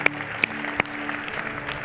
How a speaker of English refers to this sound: Let's start giving the Lord a round of applause, the good things that God is doing.